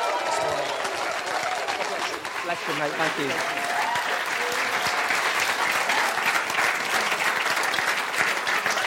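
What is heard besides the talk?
audience applause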